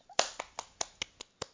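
A short burst of steady clapping, about seven sharp claps evenly spaced at a quick pace, crisp and bright, with no voices.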